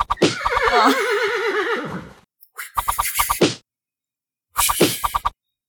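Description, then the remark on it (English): A voice mimics an irritated horse in a stable, annoyed by the swishing tail of the horse in the next stable, starting with a long wavering whinny, then two bursts of choppy, snorting neighs separated by short pauses, loud. “One horse you see from one stable that's in a particularly dark corner, its tail is swishing around and hitting another horse in the stable next to it, and that horse is getting annoyed.”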